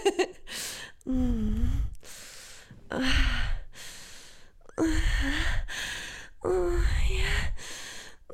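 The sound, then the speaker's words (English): A single voice acts out exaggerated fake orgasm moans, about four long, breathy, rising-and-falling cries, each separated by a short quiet gap, with no talking. “I know, your best fake orgasm moan.”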